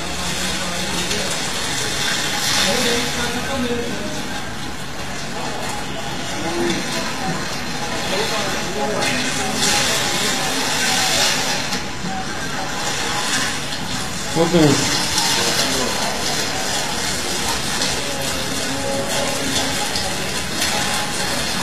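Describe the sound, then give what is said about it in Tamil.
Water pours and splashes steadily over someone being bathed, a continuous rushing gush that lasts the whole stretch, with a busy murmur of voices in the background. “குளிக்க போறதுக்கு முன்னாடி வெள்ள இருக்காரு, இப்ப வந்து அவளியா அவருடைய அருள் இறங்க போகுது, 2 நிமிஷத்துல இறங்கணும் பாருங்க என்ன கலர்ல மாறிட்டாரு பாருங்க.”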